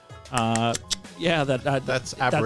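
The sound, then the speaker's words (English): Rapid clicks from a handheld Baofang two-way radio, sharp ticking bursts of radio feedback mixed with a buzzy, warbling electronic tone, fairly loud. “If anybody has expertise in Baofang, I would love to know what that clicking”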